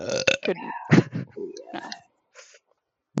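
A long, loud burp right up close, croaking and rumbling with shifting pitch for about two seconds, then trailing off into near silence with a faint sound afterward.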